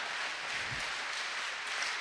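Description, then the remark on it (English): A church audience during a service claps together in a steady, dense wash of hand claps that holds at an even loudness throughout, with no voices standing out. “Very often, all right, someone started the clap thing.”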